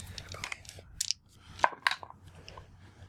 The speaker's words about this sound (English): Roll the dice. It's a D100.